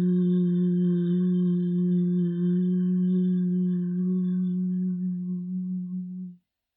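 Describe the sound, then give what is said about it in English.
A person chants a single sustained 'hum' with closed lips on the exhale after a deep breath, steady and fairly loud, holding one low pitch for about six seconds before fading out at the end of the breath. “So keeping your lips closed as you reach the end of the hum sound.”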